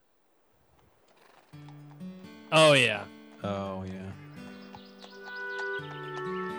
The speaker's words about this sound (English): Ooh, they even brought a horse in. Can you imagine dealing with that as part of the orchestra? Who's going to clean up after that horse?